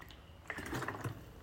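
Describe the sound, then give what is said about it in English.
A quiet sip of water: a brief slurp followed by a couple of soft swallowing gulps, with no talking. “so I'm just going to drink water.”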